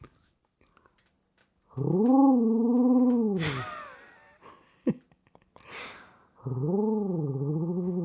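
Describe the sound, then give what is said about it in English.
An owl hoot imitated by blowing through the knuckles of the thumbs of cupped hands: two long, loud, breathy hooting tones with a slightly wavering pitch, separated by sharp puffs of air and a short pause. “So cut my hands, blow through the knuckles of my thumbs to make the hooting sound of an owl.”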